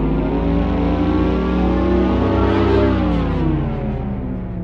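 A synthesized driving sound for an electric M sports car, a loud, steady humming drone rich in harmonics whose pitch swells slightly midway, then settles and fades a little at the end; no voices.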